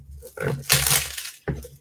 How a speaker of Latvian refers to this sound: Ok, nu ko, tad raujām vaļā, to upakojam.